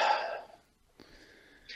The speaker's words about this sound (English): So for instance, just, you know, drop your shoulders for a second. All right. Take a deep breath.